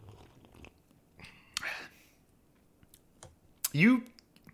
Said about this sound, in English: Okay, I mean, do a little sip here.